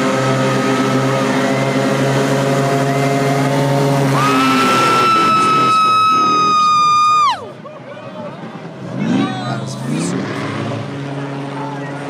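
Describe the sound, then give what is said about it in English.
A loud, buzzing propeller-like whine from a fast air-propelled vehicle with no engine speeding down a street jumps up in pitch, holds a steady high drone for a few seconds, then drops away abruptly, with crowd murmur throughout. “I mean, I see why now, because there's no actual engine. It's just propelled by air.”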